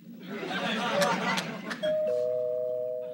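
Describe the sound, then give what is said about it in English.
A two-tone doorbell chime, a ding followed by a lower dong, rings out and lingers steadily after a stretch of murmuring voices and laughter. “I am not answering the door to that man.”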